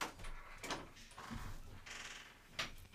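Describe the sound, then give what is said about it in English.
A wooden door of a small cabin creaks open or shut, a drawn-out groaning squeak with a few rising and falling strains over about three seconds, heard alone without talking. “So it's a small cabin, everyone. And everything creaks.”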